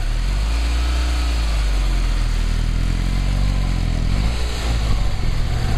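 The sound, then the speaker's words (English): The 640cc two-cylinder engine of a Nano car runs steadily with a coarse, buzzing low throb that vibrates the whole car, its pitch rising and falling slightly as the revs shift. The engine sounds alone, with no talking. “The Nano's 640cc two-cylinder engine is about as smooth as a coffee grinder.”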